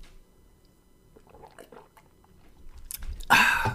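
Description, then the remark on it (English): Wet gulping and swallowing as someone chugs a Starbucks caramel macchiato from a cup, with small slurps building to a louder, breathy gulp at the end. “I'm chugging. I got a little caramel macchiato action going on from Starbucks.”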